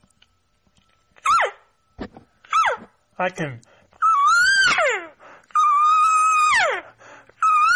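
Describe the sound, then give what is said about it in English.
Imitated cow elk mews: three short, nasal calls that slide downward in pitch, then two long, whiny high-pitched mews that hold steady before dropping off, with a brief spoken phrase between. “You know, if I can make a cow call just like that, I can shorten it for a chirp.”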